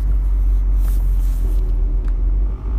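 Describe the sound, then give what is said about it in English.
A steady, loud low-frequency rumble fills the inside of a moving car being driven on the way to work, with road and engine noise droning continuously and a faint hiss above it, no voices present. “And I'm doing it in my car on the way to work.”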